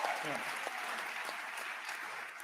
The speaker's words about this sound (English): Do you hear that applause?